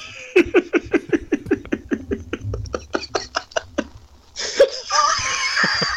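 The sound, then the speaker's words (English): A woman screams in a fast series of sharp, rhythmic shrieks, then breaks into a longer, sustained high-pitched wail. It's fairly loud, with no talking. “So she's screaming then.”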